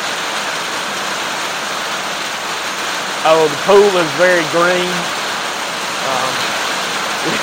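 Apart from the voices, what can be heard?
heavy rain falling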